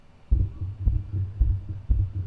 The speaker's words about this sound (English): Or you hear the footsteps, and here's what you hear.